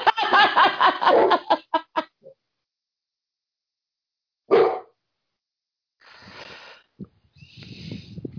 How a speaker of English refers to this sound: Yeah, we got one dog barking, we got mine sneezing over here.